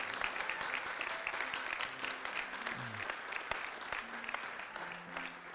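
A crowd breaks into a round of applause, dense, steady clapping that holds at an even level throughout, with faint voices murmuring underneath.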